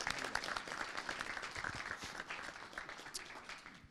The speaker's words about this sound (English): Now I want you to give them all a round of applause.